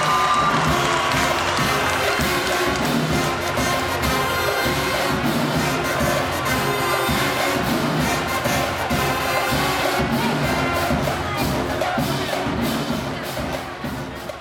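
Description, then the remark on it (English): A crowd at a Reagan Raiders event applauds and cheers for two groups for about fourteen seconds. A dense, loud, steady roar of clapping and shouting voices that only starts to ease off at the very end. “Let's give a round of applause for both these groups out here doing a great job.”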